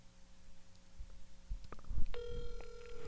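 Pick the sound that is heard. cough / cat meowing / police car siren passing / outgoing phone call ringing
outgoing phone call ringing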